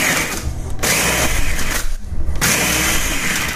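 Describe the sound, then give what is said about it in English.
A loud blender chops a full container of ice, some of it already turned to snow, with a harsh, rattling roar. The churning briefly eases twice, then surges back at full strength, with no voices. “After seven times, some of it is snow already, and I got a full container in there. So let's see how it does with chopping it again.”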